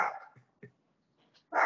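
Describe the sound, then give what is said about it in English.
A female dog barks loudly twice, once at the start and once at the end, with a few softer yips and whines in the quiet stretch between. No one speaks. “He knows it's tampering, so that's why she's barking up a storm.”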